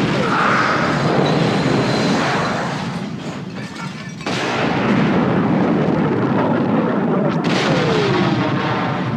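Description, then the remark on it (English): A loud film sound effect of a sail barge explosion, partly recorded at an old house being demolished in Petaluma, California: dense roaring blasts and crackling debris rumble continuously, easing briefly before a sharp new burst kicks it back to full force, with another crack near the end. “Up next, the sail barge explosion.”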